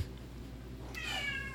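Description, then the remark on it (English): A single drawn-out meow from a pumpkin-colored female cat rises suddenly after a stretch of quiet low hum, its bright, harmonic-rich cry sliding slightly downward in pitch before fading. “She agrees. She's colored like a pumpkin too.”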